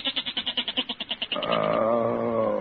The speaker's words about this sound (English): Listen to that goat, Peg. He's been baaing all night.